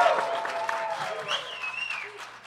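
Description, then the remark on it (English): An audience cheers and applauds in a sustained burst to vote for Team Owl, a dense wash of clapping mixed with whoops and high shouted voices rising above the crowd noise. “So, in the team vote, the audience vote, who is for Team Owl?”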